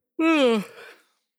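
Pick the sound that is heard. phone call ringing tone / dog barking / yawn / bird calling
yawn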